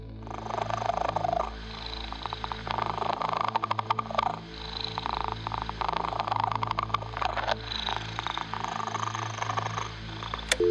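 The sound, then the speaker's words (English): Kittens purring, a steady rumbling drone with soft rhythmic pulses, continuous for the whole stretch with no voices. “Next up, we have Kittens from a Wicker Basket. Kittens, you're on the air.”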